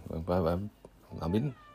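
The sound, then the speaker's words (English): A cat meows twice in a makeshift vocal booth, each call a drawn-out tonal cry with a slight rise and fall, separated by a short pause. “Oh, well, there's a cat in here.”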